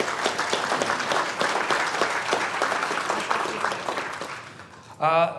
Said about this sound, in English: You guys give them a round of applause.